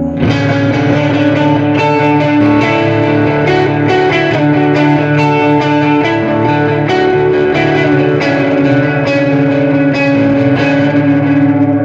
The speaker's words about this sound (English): So all of those tones right there were just volume and tone adjustments on the guitar. I didn't touch anything, but it's completely possible to transition in songs just using little subtle adjustments on your guitar